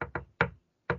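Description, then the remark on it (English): Four sharp knocks on a wooden hotel room door in an uneven, tune-like rhythm: two quick raps, a pause, a third, a longer pause, then a fourth. They are fairly loud, and nobody speaks. “And I hear some knocking and we think it's housekeeping. But we feel like it's coming from our door.”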